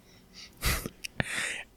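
A single sharp sneeze: a breathy intake, then an explosive burst and a hissing exhale, with no talking around it.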